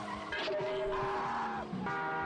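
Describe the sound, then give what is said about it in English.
Car tires squeal loudly as cars skid in a stunt, in long, sustained screeches that waver and dip in pitch, one skid sliding straight into the next with engine noise underneath and no talking. “Damn it, all these cars had one day left to retirement.”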